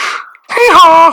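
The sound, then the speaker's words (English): A person imitates a donkey's bray with one short hee-haw: a breathy first part, a brief gap, then a louder, strained, wavering voiced note. “Let's hear your donkey.”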